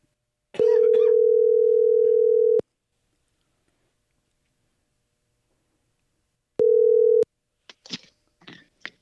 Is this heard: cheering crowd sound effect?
no